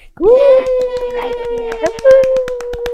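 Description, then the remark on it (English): Steady, rhythmic clapping during lockdown, applauding the introduction of a dancer, speeding up slightly, heard under a long, sustained wailing tone that holds one pitch almost throughout. “Even in lockdown, people applaud.”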